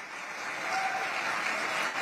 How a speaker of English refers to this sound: Got a standing ovation there from the crowd at the end.